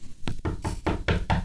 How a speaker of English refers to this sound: All right, are we ready? You got to knock on the door.